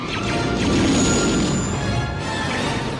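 Loud, dense crashing and rumbling from TIE fighters smashing apart in a space battle, a continuous wash of impacts and roaring noise with thin whistling tones above, no voices.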